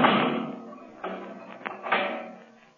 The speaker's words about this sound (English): You can lock that steel door